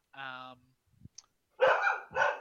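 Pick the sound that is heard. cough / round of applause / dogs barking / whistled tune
dogs barking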